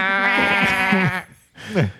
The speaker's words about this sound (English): And then you go to the field and it's just a bunch of sheep.